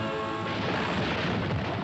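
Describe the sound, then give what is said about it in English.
A loud, rolling thunder crash in the trailer for Walt Disney's Swiss Family Robinson, as a ship is tossed by waves, fills the whole clip: a dense roaring rumble that stays steady and heavy for about two seconds, with a faint tonal hum underneath at the start. “A ship is being tossed by waves. Thunder claps.”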